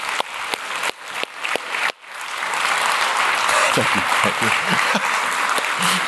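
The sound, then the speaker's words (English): An audience applauds students, teachers and others involved with PE Plus and the schools. It starts with scattered individual claps that quickly swell into a dense, sustained wash of clapping, with a few faint voices and cheers mixed in. “Let's clap for these people.”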